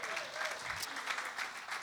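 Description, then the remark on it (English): A crowd applauds a young volunteer who came out to help, a dense, even patter of many hands clapping at a moderate level throughout, with no pauses. “Let's give Noah a round of applause.”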